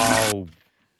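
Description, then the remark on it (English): A short toilet half flush: a loud burst of rushing water that stops abruptly, leaving a brief humming, gurgling tail that fades out within a second. “Ooh, half flush. Oh, the water saver, eh?”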